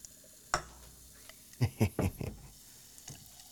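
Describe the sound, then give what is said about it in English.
Vanilla Coke with coffee being poured like a beer: a sharp clink, then a short run of splashing, glugging bursts with a light crackle of fizz, fading to soft hiss and one last small splash. Quiet overall. “You're pouring it like a beer. Yes. You want it to... whatever. You want it to be sound fizzy.”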